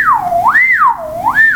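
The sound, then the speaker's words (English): A person whistles with the mouth, a smooth, sliding tone that glides up and down in slow waves, loud, with no talking over it. “I can whistle in and out with air. It's a whistle.”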